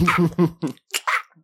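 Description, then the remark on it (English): A voice imitates a cat retching up a hairball: a few voiced, gagging heaves followed by harsh, breathy hacking bursts, fairly loud, over about a second and a half. “Like a cat trying to throw something up.”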